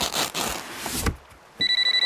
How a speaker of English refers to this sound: why is my cell phone going off? Didn't I have that turned off? It's actually a waiter coming to him with a little FedEx envelope that's vibrating.